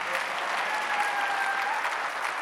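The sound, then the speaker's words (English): A crowd applauds steadily, a dense wash of many hands clapping at once, holding at an even, fairly loud level before cutting off abruptly. “Anybody clapping, it will be easy.”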